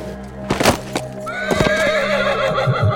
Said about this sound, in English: Killian gave off a loud whinny that pierced the quiet. He couldn't see as clearly down the road as Arca, and that made him more nervous.